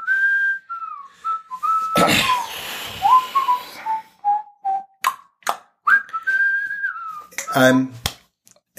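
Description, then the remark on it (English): Someone whistles a meandering tune, with sliding notes and short pauses, while dishes and pans clatter loudly in between and a few sharp clicks and knocks punctuate it. “Yeah, with the whistling.”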